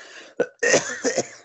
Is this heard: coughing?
yes